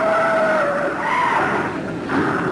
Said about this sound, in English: A car hits the wall. Another hits him. He's heading for the wreckage.